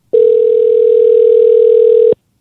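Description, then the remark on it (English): A steady telephone tone sounds alone for about two seconds while calling a phone number, one continuous pitch that holds loud and unchanging before cutting off abruptly. “So we can call his number and hear it if we want.”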